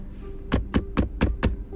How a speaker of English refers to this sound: He knocked on the door, and she answered